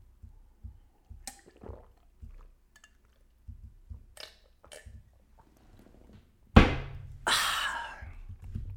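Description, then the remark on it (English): Someone gulps water in a series of soft swallows, then a sharp thunk as the container is set down, followed by a brief plastic crinkle. No one speaks. “I gotta drink water, because my throat is parched.”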